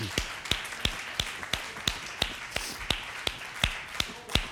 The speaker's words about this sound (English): Can we clap our hands one more time for the Lord Jesus today?